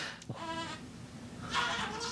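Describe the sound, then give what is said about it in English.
A baby's voice gives two wavering, bleating cries that sound like a goat, heard faintly in the background with no clear talk over them. “Do you hear my baby making a billy goat sound in the background, by the way?”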